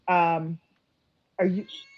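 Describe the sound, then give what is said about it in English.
A cat meows twice, fairly loud: a drawn-out first call, a short pause, then a second meow that bends in pitch, with no talking over them. “My cat has now made her presence known.”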